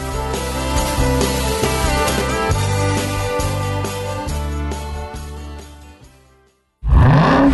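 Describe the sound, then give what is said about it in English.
Music with a steady beat plays and fades out, then a supercharged 6.2-liter Hemi V8 engine suddenly roars in loud, its pitch climbing sharply in a brief, aggressive rev as it accelerates. “We hear a 6.2-liter Hemi V8 with a supercharger that accelerates so fast, it'll suck the air out of your lungs and knock you back in your seat like you're an astronaut in a rocket ship”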